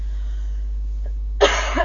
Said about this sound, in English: I'm busy coughing my brains out, which might explain where they've gone.